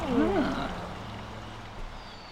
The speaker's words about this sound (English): We carefully navigate our way through the water, past cattails and phragmites, until we find a little spot to drop anchor.